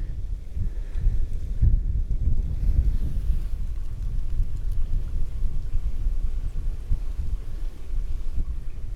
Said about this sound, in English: And if I just look over this bank, I can see an area where there's a really nice stream. And you might be able to just hear it. And the wind's blowing.